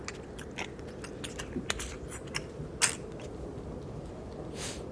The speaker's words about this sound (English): As you're getting close enough to be near the entrance, you can hear things again. As you hear a wet, crunching sound of bones shifting inside something's mouth.